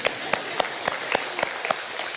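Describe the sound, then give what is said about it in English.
A church audience claps in steady unison after a scripture reading, about seven sharp, evenly spaced beats over a dense wash of scattered applause, with no voices standing out. “You could clap.”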